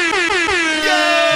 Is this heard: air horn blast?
yes